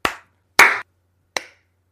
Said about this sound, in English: All right, so we're all recording? Yes. Okay, I'll start the clap.